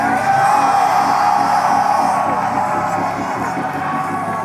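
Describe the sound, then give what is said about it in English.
A large church audience, on its feet, screams and shouts together in a sustained, loud roar of yelling and whooping voices that fills the space continuously, with no single speaker standing out. “I dare you right now to jump up on your feet and start screaming, let it go.”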